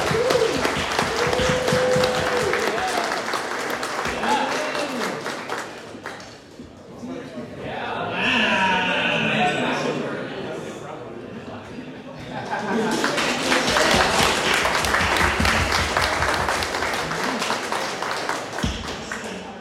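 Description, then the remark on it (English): An audience claps for the tournament finalists in a dense, steady round of applause that eases into a quieter lull with murmuring, then swells back into another loud, sustained burst of clapping. “A round of applause for our finalists.”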